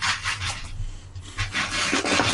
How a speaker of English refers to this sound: Sorry, we forgot to pull out our dice. Yeah. Go ahead and pull them out. Making noises. I was definitely pulling them out by hand